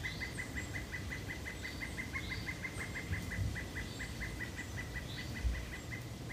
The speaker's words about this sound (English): That is a pileated woodpecker.